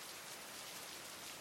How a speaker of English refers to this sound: The rain persists, fleeting down your face and damping your hair over your shoulders without further consequence.